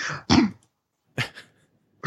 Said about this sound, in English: So, I'm sorry. That was a really poorly timed throat clearing when that I really just needed to clear my throat. Anyway. That was not related to the conversation.